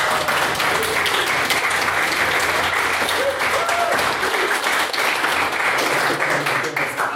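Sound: audience applause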